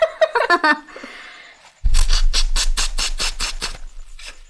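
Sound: blowing nose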